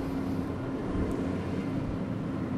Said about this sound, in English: Trash truck.